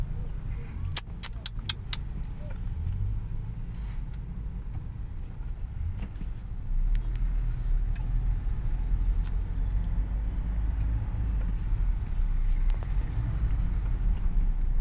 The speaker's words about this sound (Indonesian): Aduh, ini macet Cileungsi macet. Macetnya sampai perapatan